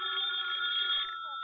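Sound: telephone ringing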